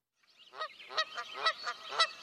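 A goose honks about five times in quick succession, loud, nasal, harmonic calls rising and falling in an uneven rhythm, with no talking.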